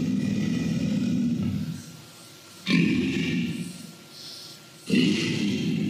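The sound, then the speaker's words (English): A deep, rumbling alligator growl comes in three long, loud bursts, each a low guttural rasp that drops away into a brief quieter lull before the next one starts. “This alligator, low frequency, really low.”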